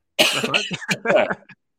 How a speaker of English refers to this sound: I'm going to cough.